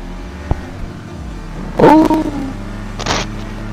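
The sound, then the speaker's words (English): A video game car engine drones steadily, then revs up sharply with a rising, whining surge that settles back into a low hum, followed by a short burst of noise near the end. “Your car's stronger than us.”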